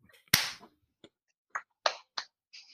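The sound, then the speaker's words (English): Ragged, unsynchronized hand claps from people trying to clap together after a 3, 2, 1 countdown: one loud, sharp clap followed by five or six softer claps at uneven intervals, never landing together, with no voices. “Okay, 3, 2, 1, every clap.”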